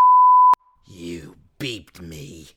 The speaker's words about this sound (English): You beeped me? How dare you? How very dare you?